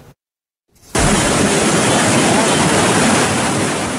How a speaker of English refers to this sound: High rain triggering flash floods in northern India. Residents watched from rooftops as fast-moving water was flowing through the town of Kullu.